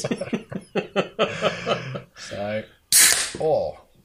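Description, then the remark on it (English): A shaken can is cracked open with a sharp pop and a brief, loud burst of spraying fizz, set between stretches of excited voices and laughter-like sounds. “This is going to be like I just won the Grand Prix and I'm spraying the champagne.”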